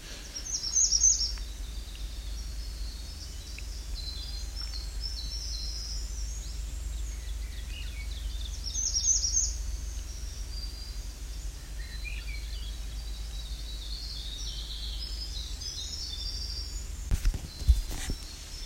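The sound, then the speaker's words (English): Faint veery song, a couple of brief breezy phrases separated by long pauses, over a steady low rumble and soft background hiss with no talking. “I believe we have a veery here. I singing very quietly.”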